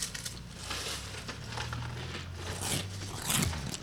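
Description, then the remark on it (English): Crisp, dry crunching of limited edition pumpkin spice Frosted Flakes cereal being chewed, a steady series of crackly bursts with a few louder crunches near the end, heard on its own without talk. “It's crunchy. It's crunchy.”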